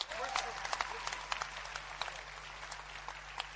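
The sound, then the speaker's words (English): A church audience claps for what God has done, in a dense, steady burst of overlapping hand claps that carries on through the whole stretch at a moderate level, with a low steady hum beneath. “Clap for what God has done already.”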